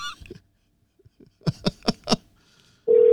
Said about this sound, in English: Answer the phone, Bert.